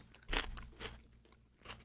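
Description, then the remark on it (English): A raw homegrown pepper is bitten with a sharp, loud crunch, followed by a few softer wet crunches of chewing spread across the next second or so. No one speaks. “And just to talk about whether or not these peppers have changed over the years and what happens to us when we eat one.”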